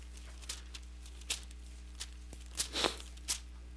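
Soft, papery rustles of many Bible pages being turned as people look up Luke chapter 21, verse 28, coming in scattered brushing bursts with a fuller flurry near the end, over a low steady hum and with no talking.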